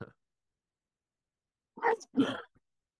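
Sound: sneeze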